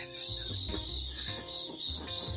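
Steady, high-pitched cricket chirping trills on without a break, with soft low rumbles shifting beneath it and no voices present.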